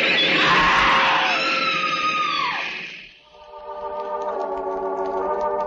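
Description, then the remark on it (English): A woman's loud, shrill scream sweeps downward over a noisy rush, then cuts off into a steady metallic grinding hum as a train grinds to a stop at a platform. “Quietly, the man who is Death steps back from the edge of the platform as the train grinds to a stop. A woman screams.”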